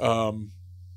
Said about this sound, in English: I have to excuse myself for burping into the microphone, but I also have to say, like, I, right into it.